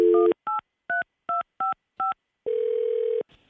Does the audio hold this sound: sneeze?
no